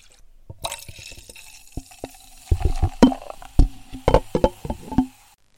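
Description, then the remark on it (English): Wine is poured into a glass, a steady liquid hiss with irregular glugging splashes that grow louder and busier midway before stopping abruptly. Fairly quiet, with no talking. “We didn't even move. No, we didn't move. I poured some wine.”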